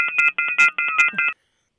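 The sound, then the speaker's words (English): A loud electronic telephone tone pattern, a rapid series of pulsed beeps for just over a second, then abrupt silence as the phone system cuts out during a live radio broadcast. “Uh-oh, the phone system just went out.”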